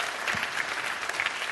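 A crowd at a church service claps for a member who shared her testimony, in a steady, dense round of applause, the many overlapping hand claps forming a continuous bright patter at an even loudness throughout.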